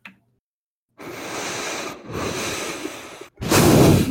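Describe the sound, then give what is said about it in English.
A beatboxer imitates a whale breathing through its blowhole: three long, breathy, rasping exhalations with short gaps between them, the last one the loudest and harshest. No one speaks. “That sounded like a fucking whale breathing. Yeah. Like a blowhole.”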